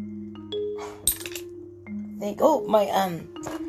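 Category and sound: impact, glass breaking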